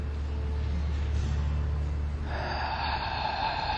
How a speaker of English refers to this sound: I am breathing here.